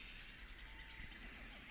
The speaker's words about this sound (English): You hear locusts in the background, everywhere. So loud, in fact, that you can't hear your own thoughts.